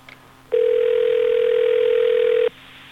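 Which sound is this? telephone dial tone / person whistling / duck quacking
telephone dial tone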